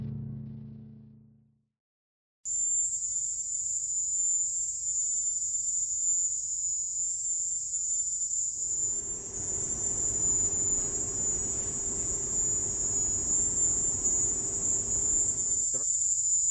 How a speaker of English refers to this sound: So, I'm going to play a little clip of what Havana syndrome sounds like. This clip I'm taking from the Associated Press. They somehow obtained a recording of what U.S. embassy workers heard in Havana before they started experiencing these symptoms.